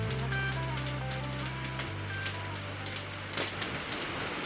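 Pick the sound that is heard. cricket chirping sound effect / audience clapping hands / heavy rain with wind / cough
heavy rain with wind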